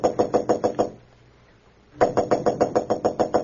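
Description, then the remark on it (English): Rapid, loud knocking on the door of room 911 at the Marlboro Hotel in Marsden City: a quick burst of about six raps, a second of silence, then a longer run of steady knocks. No voices. “Roebling aboard a Metropolis-bound train to room 911 at the Marlboro Hotel in Marsden City, Clark Kent was about to knock at the door when suddenly he blanched.”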